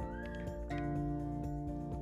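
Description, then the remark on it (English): A pet bird calls with soft whistling notes: a brief rising chirp, then a steadier held tone that repeats faintly over about two seconds, with no one talking. “I know my bird wants something. I hear it.”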